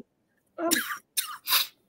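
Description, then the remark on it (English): A raspy burst of coughing from a person in the evening: one longer throaty hack followed by two sharp, quick coughs, with brief silence between them and no talking. “I hate coughing, but I think it's because it's the evening time and it comes back in the evening, so.”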